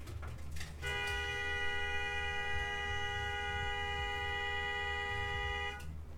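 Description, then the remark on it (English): A car horn blares in one long, unbroken blast lasting about five seconds, from a black Mercedes outside, steady and fairly prominent over a low rumble of idling engine or street noise. “No, it's like some Mercedes.”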